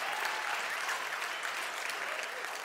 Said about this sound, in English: Honestly, that clap was louder a few weeks ago.